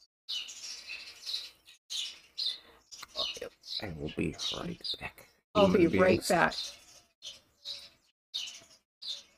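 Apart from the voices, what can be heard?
birds chirping and squawking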